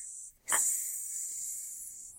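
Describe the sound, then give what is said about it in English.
A person hisses like a snake, mimicking wrestler Randy Orton as a sneaky snake, a sustained breathy hiss that starts abruptly after a brief pause and holds steady for nearly two seconds, fairly loud. “I'm a sneaky, snakey snake.”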